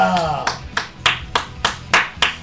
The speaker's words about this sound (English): Alright, I'm the only one applauding because I'm the only one that thinks it's the best album.